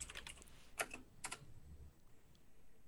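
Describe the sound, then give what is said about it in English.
Quick bursts of keyboard typing as someone searches for a PS4 keyboard and mouse, a flurry of clicky keystrokes followed by two sharper clusters of taps, fairly soft, then quiet apart from low background hum. “Let me just look it up.”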